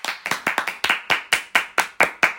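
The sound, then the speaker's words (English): People clapping for the UK in a quick, fairly steady rhythm, about a dozen sharp, bright claps over a couple of seconds, loud and with no voices. “You can't see me, but we were clapping.”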